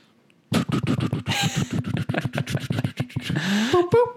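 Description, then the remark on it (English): A voice imitates a helicopter (a chopper) being remote started: rapid, rhythmic sputtering chops with breathy bursts, speeding up slightly, then a rising whine and a couple of short high tones at the end. “I can, I can remote start my chopper.”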